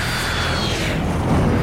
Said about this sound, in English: It pulled a tight loop a few hundred feet above the two men before sharply dropping its altitude to come in for a landing in the large clearing.